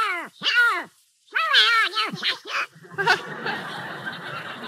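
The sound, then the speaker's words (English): A cartoon duck voice squawks in several rapid, warbling bursts, loud, with no clear words, before giving way to a rough, hissing wash of noise. “What's that noise, Mickey? Oh, that's Donald Duck.”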